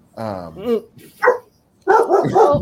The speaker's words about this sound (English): Sorry. Oh, I got the dogs going.